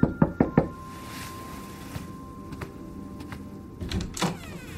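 On Christmas Eve evening, a mother raps four quick, firm knocks on her child's door in rapid succession, distinct, followed by quiet with a faint steady hum and a few soft scattered clicks.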